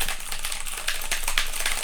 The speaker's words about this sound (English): You hear them typing away.